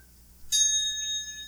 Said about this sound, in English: Oh, just the bell!